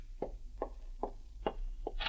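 knock on a door

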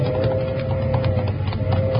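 horse hooves galloping

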